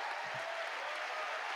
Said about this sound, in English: You know what? Clap it up. Clap for that.